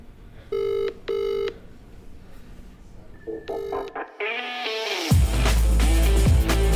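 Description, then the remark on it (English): A telephone ring tone sounds in two short bursts, then a third after a pause, followed by warbling, gliding electronic tones that swell into a loud, dense noise. No one speaks. “What about ringing a random woman that I don't know to ask if I can speak to Banksy, please?”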